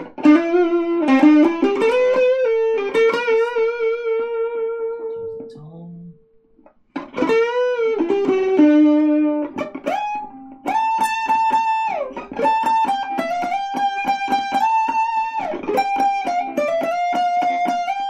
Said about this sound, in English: So it's kind of distorted, but totally different from that distortion pedal. Now let's drive it all the way.